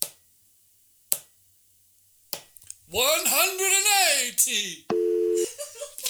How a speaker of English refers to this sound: You're not doing the sound effect, are you? No, that's your phone. That's your real phone. Just let it ring out. Let it ring out.